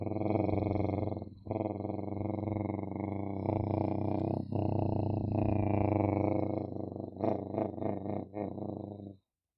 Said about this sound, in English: Through the water, you hear the pulsing and surging and gurgling of the bubbles.